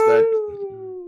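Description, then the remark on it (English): A person's voice mimics a ghostly howl, a single sustained "whoo" that slowly sinks in pitch over about a second, fairly loud, with faint murmuring underneath. “So Howling Phantons is something people used to say a lot.”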